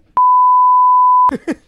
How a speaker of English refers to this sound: Again, we're gonna start off an episode where it's just like beep. What better way to start off with the beep? Yeah. But it's the same beep.